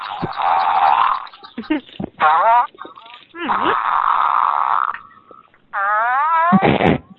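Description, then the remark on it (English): A series of loud, raspy fart sounds, four or five long buzzy blasts with short sputters between them, some wavering and sliding in pitch, with no talking. “My dog can hear that. The fucking fart right brain's now.”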